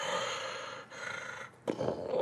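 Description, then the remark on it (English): A voice imitates the heavy breathing of an unseen animal heard with paws scrabbling through dirt up a 30 to 40 foot embankment in a valley: three long, rasping, growly breaths in and out, each harsh and noisy with brief pauses between, with no words spoken. “You don't hear a baying, but up on the right-hand side, like, up this kind of, like, maybe, like, 30, 40 feet embankment up onto this part of this valley, you hear paws scrabbling through dirt, and you hear just heavy breathing, like...”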